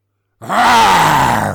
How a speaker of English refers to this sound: Oh my. Is there a problem? Mr. Jones, it's a lion. Two lions, Geraldine.